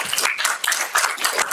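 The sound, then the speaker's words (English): An audience breaks into applause, a dense, steady wash of many hands clapping at once, bright and crackly, holding fairly loud throughout without any voices over it. “And then this is a good segue because certainly give them a round of applause.”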